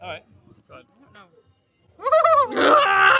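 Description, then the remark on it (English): A person does a vocal horse impression of a horse finding out it is a horse: a few soft murmured sounds, then a loud, wavering whinny-like cry that breaks into a harsh, raspy, roaring screech. “Would you like to do a horse impression?”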